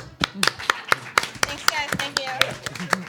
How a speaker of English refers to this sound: Well put. Slow clap. Wow.